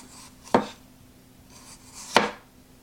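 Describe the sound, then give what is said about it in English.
A sharp knife, rocked through a potato, cuts it twice into paper-thin slices, each stroke a sharp, crisp chop against a board, spaced about a second and a half apart. No one speaks. “You can see you can kind of rock it like so. All right, the potato here. And yeah, look at that. I mean, paper thin cuts.”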